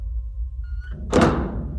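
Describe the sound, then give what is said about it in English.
A door opens: a faint thin creak, then a single loud wooden thunk that quickly dies away over a low background rumble. No one speaks. “And what could be behind door number two?”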